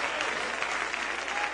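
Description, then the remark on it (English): An audience claps their hands in praise to the Lord, a dense, steady wash of applause from many people at a fairly even level. “Give the Lord a great hand clap of praise.”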